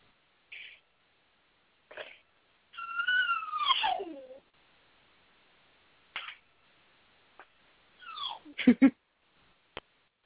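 A dog lying in a room whimpers in a couple of high, wavering whines that slide downward, separated by quiet gaps and a few short clicks and snuffles, with no one talking.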